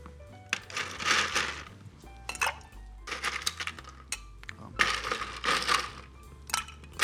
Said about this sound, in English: We'll grab some of our ice over here. We're going to place that into our small shaker.